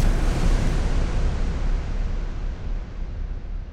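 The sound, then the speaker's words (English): Distant cannon fire rolls as a continuous deep rumble, heavy in the low end, with no distinct individual blasts standing out and no voices present. “Andre could always tell the difference between the French cannons and the Prussian ones.”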